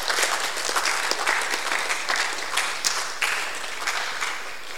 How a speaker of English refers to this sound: If you're happy, clap your hands.